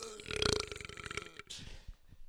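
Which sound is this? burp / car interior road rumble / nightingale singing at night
burp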